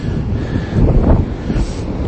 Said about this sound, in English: I'm standing on the beach at Poppit Sands near Cardigan, and the sound you can probably hear in the background are the waves, which are absolutely fantastic. They're majestic. They're rolling in.